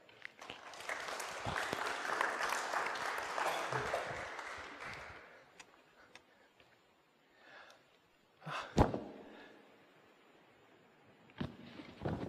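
A crowd claps in steady applause for about five seconds before it fades away, leaving a quiet room with a few scattered thumps and breathy noises.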